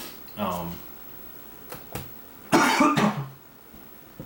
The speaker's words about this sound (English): I just coughed. Sound like fucking Joey Diaz on the mic.